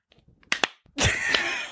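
Two quick, sharp hand claps in close succession, made on a count of three, followed by a louder, sustained burst of dense, rough noise that lasts almost a second.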